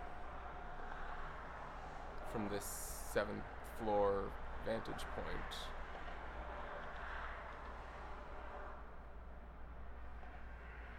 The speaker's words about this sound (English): I mean, yeah, it's got that, like, windy car whooshing sound, and you hear them bouncing over, like, segmentation in the road, and there's the occasional honk, but it has this quality to it.